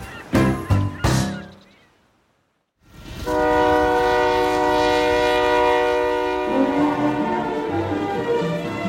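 A train rolls by with a rumbling, clattering undertone while its whistle wails in a long, sustained chord, preceded by a few short loud blasts and a brief silence.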